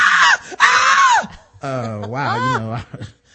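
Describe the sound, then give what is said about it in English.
A loud, shrill scream bursts out twice, then turns into a long wavering wail, likely a voice imitating a woman screaming, intense for a few seconds. “She is screaming.”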